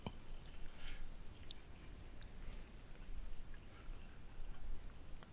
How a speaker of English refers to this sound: Sorry, I'm just pouring a drink.